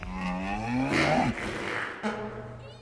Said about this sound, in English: Yep, another episode where we can't get through it without a fart sound.